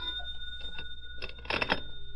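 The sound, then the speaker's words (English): A telephone rings at about 4 in the afternoon in short, bright metallic bursts that cluster into a rapid jangle near the end, over a faint steady hum, with no one talking. “It was about 4 in the afternoon when the phone rang.”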